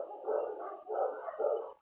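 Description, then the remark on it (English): A dog barks outside in three quick, drawn-out bursts that run almost together, sounding somewhat muffled, with no one speaking. “Mom, you hear this fucking dog parade outside?”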